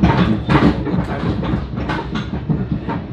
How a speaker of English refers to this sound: Sorry, we're a little bouncy in this train. A little bouncy, but going to the Big Apple.